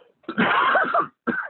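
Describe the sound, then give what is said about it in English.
A loud, breathy sneeze bursts out with a voiced, strained edge, followed after a brief pause by a shorter second expulsion. No one speaks. “Bless you.”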